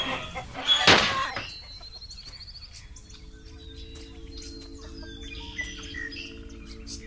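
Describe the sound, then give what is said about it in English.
Pecking, scratching chickens cluck and chirp, opening with a sharp, loud squawk, then a steady scatter of softer calls and tweets over a low, constant background hum, with no one speaking. “No more pecking, scratching chickens cluttering up your mind.”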